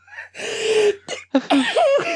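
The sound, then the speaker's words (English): A single forceful sneeze with a sharp breathy burst, followed by a quick sniff and a few short, wavering vocal sounds. “Oh, I can sneeze.”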